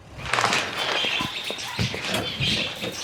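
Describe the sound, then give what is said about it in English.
Busy indoor pet store ambience in New Mexico: steady high chirping and twittering from caged birds, with scattered small scrabbling and yapping sounds mixed in at moderate loudness, and no clear speech. The store sells dogs, cats and birds. “All right, let's get out of boring Asgard and return back to New Mexico, where Thor attempts to acquire a horse from a local pet store.”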